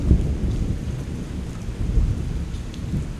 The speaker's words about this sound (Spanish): La lluvia no para, y los rayos y truenos tampoco.